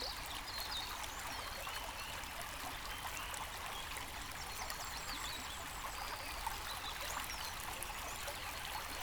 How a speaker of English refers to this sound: Notice how the water's surface glimmers and glows from the sun. Let's just stop here for a moment and listen to the sound of the stream, the birds, and the gentle breath of the air.